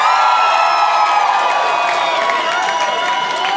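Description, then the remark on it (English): An audience cheers and whoops loudly and continuously as the single and available people make some noise when asked, with high-pitched shouts and woos rising over a dense wash of voices. “So I need all the people in the room to make some noise if you are single and available in the room.”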